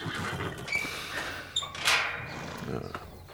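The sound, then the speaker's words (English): Restless, upset horses, with a short, sharp whinny cutting through a steady background of shuffling and rustling; no one speaks. “Fucking upsetting the horses.”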